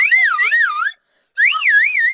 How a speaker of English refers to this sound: My slide whistle!